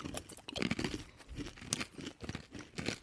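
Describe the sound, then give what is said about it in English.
Someone chews crunchy black walnuts, a steady run of crisp, crackling bites and grinding crunches in an irregular rhythm, fairly loud, with no talking. “Yeah, just hold them in your mouth. So we can experience it together because we're friends.”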